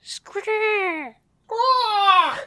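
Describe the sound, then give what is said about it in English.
A person imitates a falcon's cry with two shrill, drawn-out vocal screeches, each about a second long and sliding slightly downward in pitch, separated by a brief pause. “You guys know what a falcon sounds like?”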